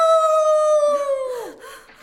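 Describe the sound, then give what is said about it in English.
A wolf howls once, a long, steady, mournful note held loud before its pitch slides downward and fades out, with no voices present. “A wolf crawling through the window!”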